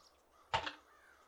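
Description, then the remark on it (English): A single harsh raven caw rings out briefly, loud against a quiet background, then fades. “she has something to do with all the ravens that we hear?”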